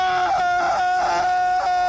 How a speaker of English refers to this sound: It's Killian Murphy in his dream. I love when he would be in his suit and screaming, and then they would flip to the outside of the suit. He'd just be laying there with no screaming because you couldn't hear him.